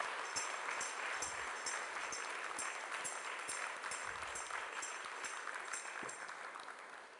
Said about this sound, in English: If you are clapping, clap for Jesus the more.